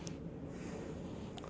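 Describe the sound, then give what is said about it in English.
A steady sniff through the nose at beer in a mason jar after swirling it to release carbonation and aromas, a soft breathy rush of air lasting over a second, with no talking. “And then I like to swirl it around a little bit, release some carbonation, release some aromas, and give it a nice sniff.”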